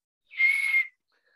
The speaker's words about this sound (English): Wait a minute. I think I committed a false start penalty. Give me my whistle.